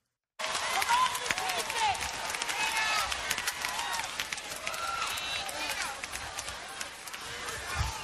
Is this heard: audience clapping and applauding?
yes